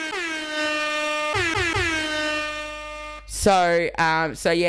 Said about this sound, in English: But yeah, so anyway, it's out, it's officially out. I think this deserves an air horn moment.